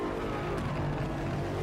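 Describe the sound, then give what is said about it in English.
The engine of an M8 sports car in a racing game demo roars steadily at high revs, a dense continuous drone with a buzzing harmonic tone, loud, with no talking over it. “That car sure go fast.”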